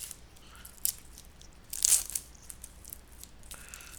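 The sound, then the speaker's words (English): A packaged Italian snack is opened and bitten: a sharp crisp crunch stands out midway, with a lighter crackle before it and soft rustling near the end. No one speaks. “Packaging is opening, and I am starting to chew.”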